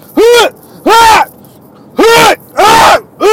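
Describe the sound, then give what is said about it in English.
A voice imitates a man's yelling scream as he runs into the middle of the woods with a machete: four loud, rising-and-falling shouted bursts in a steady rhythm, separated by short pauses, with a fifth cry just beginning at the end. “And he's screaming out,”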